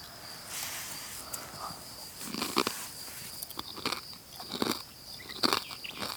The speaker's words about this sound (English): Sorry for the crunching, if you can hear it. I'm eating a potato chip.